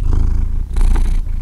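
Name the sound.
cat purring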